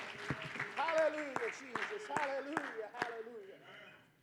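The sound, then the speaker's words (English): An audience claps hands in praise to the Lord, a ragged burst of sharp, uneven claps as voices call out excitedly over them, the noise tapering off toward the end. “Give the Lord a hand clap of praise and you may be seated.”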